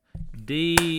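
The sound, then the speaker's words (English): Two loud, sharp hand claps snap out in quick succession, cutting over a person's drawn-out spoken voice declaring Auburn's season done. “Obnoxiously loud clap.”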